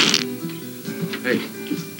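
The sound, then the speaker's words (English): A dog's loud, sputtering fart rumbles low for about two seconds, with buzzy, uneven bursts and some faint rustling around it. “I don't know what he had, but we do then meet Reno, who's clearly living out in the woods, and he wakes up to a dog fart.”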